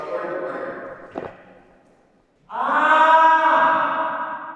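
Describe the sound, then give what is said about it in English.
A loud, drawn-out human scream rings with strong echoes in a space with big curved metal panels overhead and nothing to absorb the sound, screamed from a corner. A first sustained wail fades into a reverberant tail, then a second, louder harmonic scream swells and holds before trailing off. “And with nothing to absorb the sound, anything you say or do creates these magnificent echoes.”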